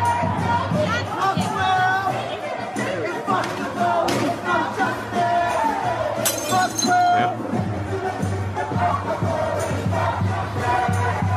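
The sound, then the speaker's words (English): A woman drinks from a glass taken off a table, then hurls it; it shatters with a single bright crash partway through, set against a loud, continuous din of crowd chatter and shouting voices. “This woman takes a drink off the table and starts drinking it and then tosses the glass.”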